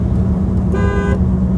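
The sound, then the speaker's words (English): A single car horn honk, lasting under half a second, honked from a moving car while passing a roadside birthday sign, over the steady low rumble of the car's engine and road noise. “We're passing the sign that says honk for Tom's 80th, and so we're doing it.”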